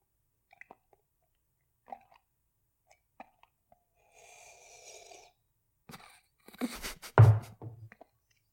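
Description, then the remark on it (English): Scattered small mouth clicks, then a sustained airy sip and a loud, wet slurp of coffee that has gone cold, near the end, with no talking. “I re-listen to these fucking slurps after I fucking do the podcast.”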